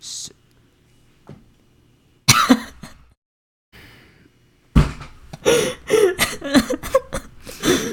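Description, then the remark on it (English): A sudden, sharp sneeze bursts out in the background, followed after a short pause by a run of harsh, breathy bursts like sniffing or throat clearing. “Was that your mom sneezing?”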